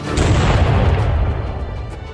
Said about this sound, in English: They fired many guns when they came inside of us, and we answered them with the cannon.